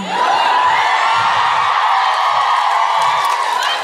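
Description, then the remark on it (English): A woman yells loudly and steadily for several seconds, a sustained high-pitched shout rising over the general noise of a cheering audience. “Of course, my people is one lady yelling at the top of her fucking lungs.”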